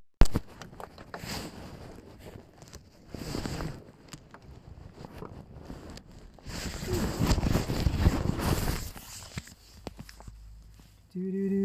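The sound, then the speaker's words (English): A car engine idles with a low rumble, then revs up louder for a couple of seconds before settling, with gusty wind buffeting the microphone throughout. “That's the engine revved.”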